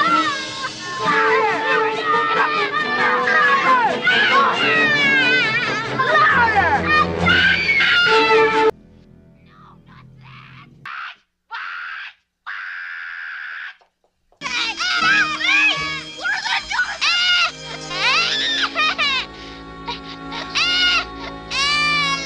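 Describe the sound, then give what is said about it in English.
Several children scream and wail loudly, shrill cries overlapping in a continuous chaotic din, broken by a brief quieter stretch with short sobbing bursts before the screaming resumes. “I can only tolerate watching A Christmas Story one time a year because of all the kids screaming”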